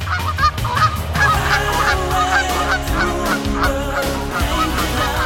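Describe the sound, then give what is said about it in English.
A flock of Canada geese honks continuously and loudly as it comes in to land at a lake, many overlapping calls blending into a dense, noisy chorus with no pauses. “But watch as a flock of geese comes in for a landing at a lake, and you might be surprised.”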